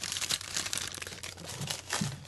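Close, crackling rustle of wrapping paper being crinkled and torn open, a steady busy stream of papery crunches and rips with no talking.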